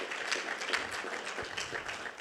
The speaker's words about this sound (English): Yeah, you can go ahead and clap for that. Yeah.